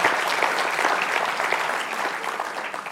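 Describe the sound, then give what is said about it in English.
Steady, dense applause from an audience for helpers who have been doing a marvelous job, many hands clapping together in a continuous wash of sound that stays loud throughout without a break. “Give them a great big applause because they're just amazing people.”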